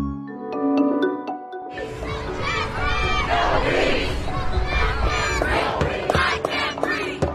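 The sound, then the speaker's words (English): A brief tonal musical sting gives way to a loud, dense protest crowd during U.S. demonstrations in the weekend before June 1, 2020, many voices shouting and chanting together in a sustained, surging roar that continues to the end. “Small and large cities across the U.S. witnessed the largest public demonstrations this weekend since the 1960s.”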